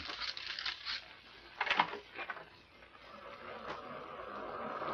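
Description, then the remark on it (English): Ocean surf heard through opened glass doors rushes in a steady, hissing wash that swells and eases, with a short sharp clatter near the start. No one speaks. “The surf sounds ominous.”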